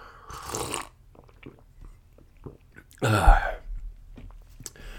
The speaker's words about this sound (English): I'm yawning like crazy, and now I got the hiccups. I'll try to keep it under control, but my goodness, I'm sorry.